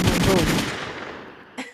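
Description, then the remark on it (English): Rapid burst of loud gunfire sound effects, several sharp shots in quick succession that fade into a decaying echo, followed by one brief final crack. “Listen, gunshots in the chat.”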